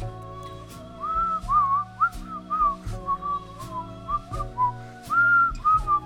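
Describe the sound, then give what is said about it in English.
A bright, clear whistled melody from the theme of the film Twisted Nerve, its wavering tune rising and falling in short phrases over steady instrumental backing with soft regular beats. “That's from Twisted Nerve.”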